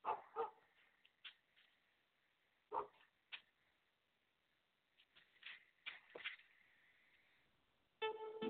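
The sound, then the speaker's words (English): A dog barks in scattered, irregular bursts, a few sharp yaps separated by pauses, with a thin, tinny quality as if played through a small speaker. “It's dog sounds.”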